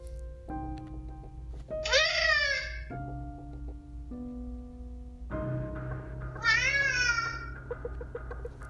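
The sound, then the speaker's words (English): A fat black cat in a hallway meows twice, a few seconds apart, each call drawn out with a rising then falling pitch, heard over a steady low musical background. “And they looked and they realized, okay, it's just a fat black cat.”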